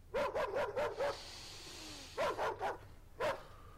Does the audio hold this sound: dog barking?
yes